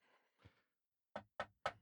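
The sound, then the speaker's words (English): Three sharp, evenly spaced knocks on a door ring out after a short pause, preceded by a couple of softer rustling thumps. No one speaks. “Oh, there seems to be someone at the door.”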